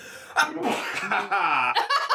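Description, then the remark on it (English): A sharp sneeze bursts out, followed by vocal noises like laughter and another abrupt burst near the end. “Sneeze again if you're weak.”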